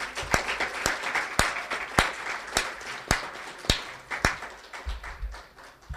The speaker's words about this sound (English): Let's give them all a hand of applause.